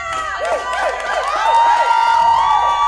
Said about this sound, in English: The crowd's a little excited here.